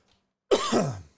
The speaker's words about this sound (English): Excuse me. God damn, I'll be so glad when this is over with. Not the show, this drainage and this cough. God. It's hard to do a job where you talk if you can't talk.